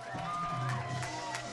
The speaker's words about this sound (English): The crowd goes wild.